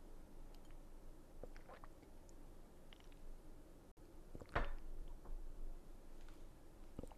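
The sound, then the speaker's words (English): A person drinking water, with faint wet mouth clicks and one louder gulp partway through, against an otherwise quiet background and no talking. “Sorry for the dead space. I had to drink water.”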